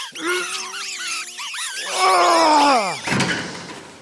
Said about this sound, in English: Well, close the door. I can't. Stuck. Here, let me.